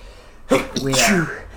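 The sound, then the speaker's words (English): One loud sneeze erupts after a brief quiet moment, a sharp burst trailing into a voiced, drawn-out finish before fading back to faint background noise. “That was a lot of sneezes, sorry.”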